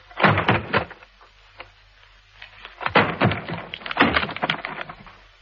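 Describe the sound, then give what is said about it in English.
A wooden door being broken down: loud crashing blows with splintering wood, coming in two rough bursts separated by a brief lull, no voices. “Look out, I'm going to break the door down.”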